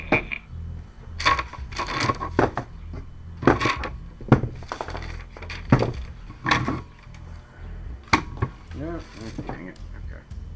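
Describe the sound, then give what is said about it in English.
Hard little objects clatter and tumble across a hard surface in several quick, bright bursts, like dice rolling on a table, with a faint voice briefly underneath. “Well, no, I went to check what I rolled, and then the dice rolled again, and I'm like, okay.”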